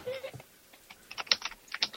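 Rapid typing on a computer keyboard, a burst of sharp clicky keystrokes in an uneven rhythm, with a brief murmur of voice at the start.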